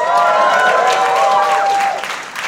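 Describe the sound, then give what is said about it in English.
A loud, dense wash of audience applause for Tommy Chong, with cheering voices and whoops rising through it, holding steady for about two seconds before beginning to fade. “I guess they didn't hear their names under the din that was the applause for Tommy Chong, who was here fresh off of Dancing with the Stars.”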